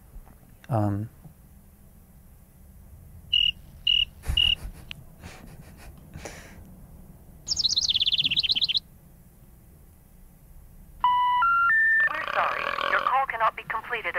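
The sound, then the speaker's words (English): A few short, evenly spaced cricket chirps, then a bird eats the cricket and flies up onto a telephone pole, with brief bursts of bright bird chirping and warbling calls and a longer run of tweeting near the end over a quiet background. “That's a little scene, a little audio scene there of a cricket getting chirped and then being chirped by a bird, eaten by a bird who flies up onto a telephone pole.”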